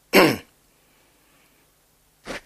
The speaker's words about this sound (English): How does one cough when one wears this? Excuse me.